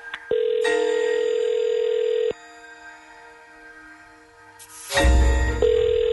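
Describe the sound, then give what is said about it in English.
Telephone ringing on an outgoing call, redialing someone who hung up: steady electronic ringback tones in repeating long bursts with pauses between, fairly loud, with a brief click and noise as the line connects. “He hung up. Let's do it again.”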